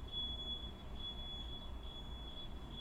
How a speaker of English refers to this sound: I think that's a truck, not a smoke alarm.